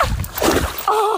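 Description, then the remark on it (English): Messy splashing and sloshing as a person lands in thick, sticky mud by the water, lasting most of a second, followed by a short voiced sound at the end. “Well, when I landed by the water, it was actually very sticky mud.”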